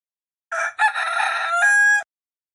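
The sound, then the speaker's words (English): A single loud rooster crow, a brief opening note followed by a long cock-a-doodle-doo that ends on a sustained, drawn-out high tone, with silence around it. “Third, use your imagination and pretend you are a rooster. What noise does your animal make?”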